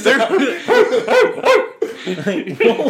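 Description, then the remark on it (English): A voice imitates a dog, letting out a quick run of loud barks and yips in uneven bursts, with a brief gap before a few more follow. “Like, what was that? You're like making dogs.”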